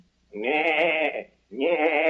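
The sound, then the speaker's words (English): A man's voice imitates a goat, giving two long, wavering bleats in quick succession, fairly loud, with a short silence between them. “I have a more beautiful voice than that miserable goat.”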